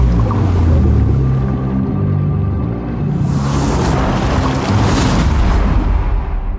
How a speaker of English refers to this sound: Jeez, that's a big wave. Hang on, buddy.